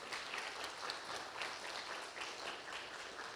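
A crowd applauds steadily, a dense wash of many hands clapping with an even, sustained level throughout and no voices standing out.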